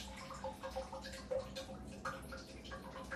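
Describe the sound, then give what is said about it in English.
A tap runs in a steady, quiet hiss with small irregular drips plinking through it. The sound is soft, with no voices. “Bit of a rogue tap in there.”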